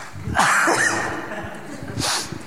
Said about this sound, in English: First cough here.